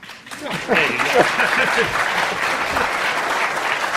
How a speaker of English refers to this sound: I like the group that applauds before you speak.